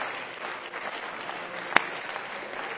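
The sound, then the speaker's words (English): An audience at a church service claps their hands to the Lord in a dense, sustained wash of applause, steady throughout, with one sharper clap standing out near the end. “Let's clap our hands to the Lord, everybody.”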